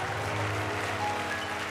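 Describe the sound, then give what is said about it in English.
A church audience gives a hand clap of praise for people standing up for Jesus, a dense, steady wash of applause that holds at an even loudness throughout, with a low sustained musical drone underneath. “Keep giving them a hand clap of praise.”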